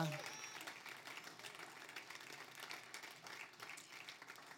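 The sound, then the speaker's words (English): An audience claps together in a dense, steady wash of applause that holds for several seconds without a clear beat, with some voices faintly mixed underneath, as a man is called up to give a testimony. “Clap, clap, clap, clap.”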